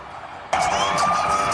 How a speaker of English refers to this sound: An ambulance with sirens blaring speeds away at 120 miles an hour from Ben's Georgia estate, flanked by two security vehicles as it rushed to the hospital.